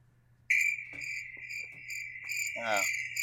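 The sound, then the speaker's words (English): A steady, loud cricket chirp sound effect, deliberately played, starts abruptly and trills continuously and clearly, with faint knocks and a brief rising squeak near the end; no one speaks. “Those weren't real crickets. Wait. I played that sound.”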